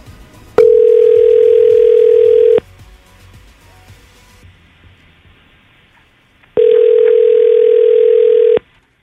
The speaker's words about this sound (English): so we're going to call him right now, get him on the phone, kind of put him on the spot and see what's up, all right?